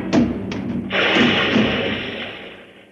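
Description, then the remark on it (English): Someone tumbling down stairs with a heavy barrel of beer: a few quick, loud thuds, then a long rolling crash and rumble that slowly fades away, with no talking. “And once I fell downstairs with a barrel of beer.”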